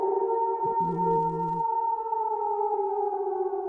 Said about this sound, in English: other wolves are responding. It sounds like it's around this first valley.